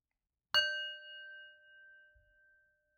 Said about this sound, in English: start with the bell.